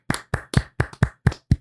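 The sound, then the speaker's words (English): A quick run of seven sharp hand claps in a steady, slightly uneven rhythm, fairly loud, with no voices. “Oh my goodness, which means it is time to clap it out.”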